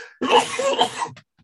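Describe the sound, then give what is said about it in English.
A single loud sneeze bursts out with a harsh, breathy rush lasting about a second, then stops abruptly into silence. No talking accompanies it. “Oh, I'm going to sneeze.”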